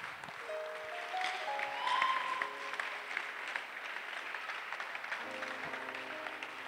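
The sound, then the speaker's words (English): An audience claps steadily for several seconds, a dense, continuous patter of many hands, while sustained keyboard-like tones hold underneath. The clapping swells briefly partway through, then settles. “Your clapping is not recognized in heaven.”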